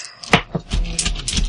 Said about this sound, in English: Another dice goes to the floor.